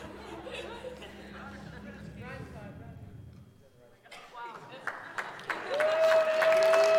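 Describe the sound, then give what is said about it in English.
Crowd chatter and laughter give way to scattered audience claps that quickly build into louder, sustained applause, with a steady high tone sounding over the clapping near the end. “Yeah, don't clap for him.”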